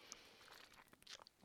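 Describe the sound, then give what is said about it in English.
A quiet sip of water: soft wet mouth clicks and faint slurping, ending with a brief louder gulp, no talking. “A sip of water there.”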